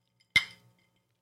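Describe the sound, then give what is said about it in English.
A single bright, crisp clink of glasses of Manhattan cocktails touching in a toast, with a short glassy ring that fades quickly into silence. “this is a good start. So cheers. Cheers.”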